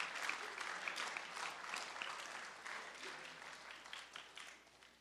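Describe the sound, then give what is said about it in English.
A church audience breaks into a steady round of applause for the volunteers who help with the children, dense overlapping claps filling the whole clip at an even level, then thinning slightly toward the end. “can we give a round of applause to all those that help with our children?”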